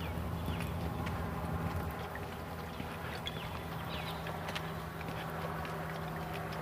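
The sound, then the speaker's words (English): A small airplane flying overhead on a morning walk drones in a steady, low, even hum throughout, with faint scattered clicks and footstep-like taps over an outdoor background hiss. “Hear an airplane.”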